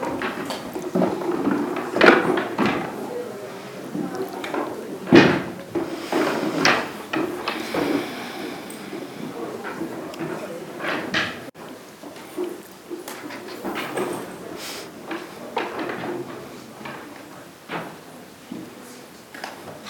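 People at a worship gathering stand and clear chairs away, shifting and stacking them: a steady bustle of wooden knocks, clunks and scrapes, some sharp, others softer, with no clear talking.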